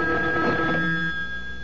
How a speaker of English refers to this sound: A phone. At this hour? I'll get it.